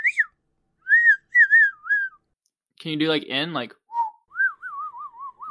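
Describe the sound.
A person whistles with their mouth in short warbling phrases, pauses, then whistles a longer wavering tune; a brief spoken question cuts in between the whistles, clear.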